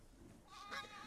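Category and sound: animal, goats bleating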